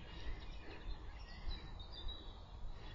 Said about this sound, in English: The birds are having a nice time.